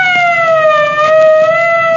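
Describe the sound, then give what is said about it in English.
A loud police siren wails steadily as police arrive, its pitch sliding slowly downward over two seconds, with faint background noise beneath it and no voices. “Here's where the cops come in.”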